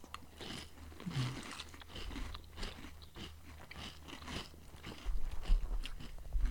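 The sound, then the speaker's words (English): Close, crisp chewing of a big crunchy bite of cereal with jalapeno, with a steady run of crackling crunches that grow a little louder and heavier toward the end. No talking. “Oh, I get closer to chew.”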